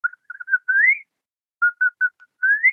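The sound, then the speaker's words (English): A person whistles a short birdlike tune twice, imitating a bird that sang outside a window before dawn: a few quick chirpy notes followed by a rising glide, with a brief pause between the two phrases. Clear, no talking. “And as I get to the part that says, your name means little bird, this bird starts singing outside my window, and it's going, I can't whistle.”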